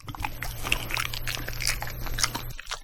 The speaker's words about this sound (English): Banana. That's the banana. I spend way too much time feeding our dog.